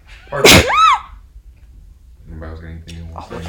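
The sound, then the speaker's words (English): A single loud sneeze bursts out near the start, sharp and breathy with a short voiced tail, followed by a pause and then people talking casually. “Bless you.”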